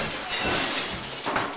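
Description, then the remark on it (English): A window pane smashed by a thrown brick shatters in one loud, bright crash, followed by a brief spray of tinkling shards, with no voices. “Someone who was against glass snuck by and smashed a window by throwing a piece of paper wrapped in a brick.”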